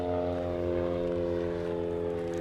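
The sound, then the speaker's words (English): A noisy small propeller plane drones overhead in Nuneaton, its steady buzzing engine hum holding loud and even throughout, with no voices. “This is a noisy plane passing.”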